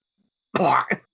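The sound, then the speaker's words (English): A harsh cough bursts out after a moment of silence, followed by a brief second rasp, like clearing something from the throat. No one speaks. “I cough up a piece of beetle.”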